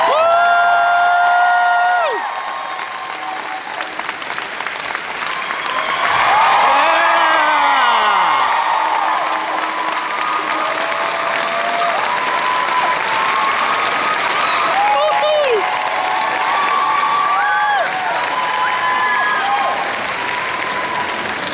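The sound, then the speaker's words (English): A large crowd at Planet Comic Con claps and cheers without pause as Harry Elwes is brought on stage, a dense wash of applause punctuated by rising whoops and shouted cheers, staying loud throughout. “What a reception. What a crowd.”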